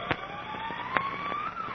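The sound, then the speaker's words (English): A state penitentiary siren wails far off in the mountains in the evening, its steady tone slowly climbing in pitch, with a few faint crackling pops scattered over a quiet background. “Far in the distance, they can hear the siren of the state penitentiary from which they've just escaped that evening.”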